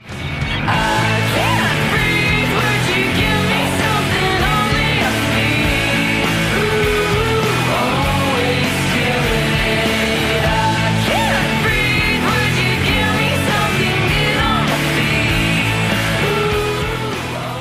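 A power pop rock song from a 2017 record plays loudly and steadily, with dense, layered guitars and a driving drum beat filling the whole stretch without a break.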